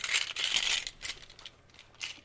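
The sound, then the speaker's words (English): Dice clatter and rattle as they are rolled for an Arcana check in a tabletop game, a dense burst of hard clicking for the first second, then a few scattered lighter knocks and one last rattle near the end, with no talking. “Hang on, let me grab my dice.”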